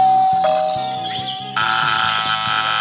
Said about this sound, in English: Okay, Shmuley, there's the building. Shmuley, ring the bell.